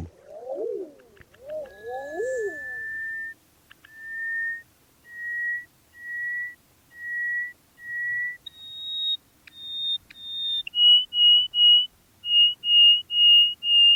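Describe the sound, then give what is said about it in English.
A greater hoopoe lark's long call: a few quick descending chirps, then a steady series of clear, piping whistles that step up in pitch toward the end. No voices. “This is the greater hoopoe lark.”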